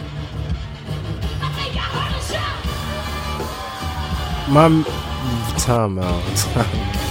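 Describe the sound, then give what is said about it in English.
A crowd cheers as a woman urinates on a man, a steady, dense wash of voices, with a few rising whoops and yells cutting through around the middle and later moments. “And people are cheering. People are cheering.”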